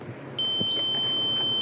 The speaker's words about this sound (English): My ear is ringing. Yeah, mine too.